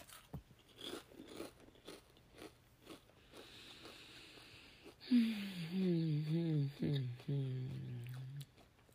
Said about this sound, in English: But my mouth is craving something. Oh. Excuse me while I chew.